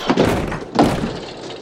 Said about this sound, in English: He clumsily kicks in the door to the room.